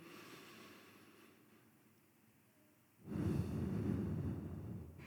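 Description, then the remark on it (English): A slow, deep belly breath: a soft, quiet inhale through the nose as the belly goes out, then a louder, rushing exhale as the belly is pulled in to push the air out, filling the last couple of seconds. No one speaks. “So you feel your belly go out, you put your hand on your belly and you go. And then you pull your belly in and that pushes the air out.”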